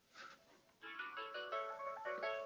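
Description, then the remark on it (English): A phone alarm chimes out a bright, melodic electronic tone pattern, steady and fairly loud after a soft start, repeating short notes with no voices, going off even though the phone was silenced. “I silence my phone and the alarm goes off anyway.”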